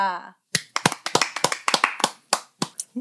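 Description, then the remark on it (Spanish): A short vocal sound gives way to a run of sharp hand claps, about a dozen in an uneven rhythm, like a small group applauding rather than a large crowd, welcoming a guest of honor. “Un fuerte abrazo y aplauso y gritos y todo lo que quieran.”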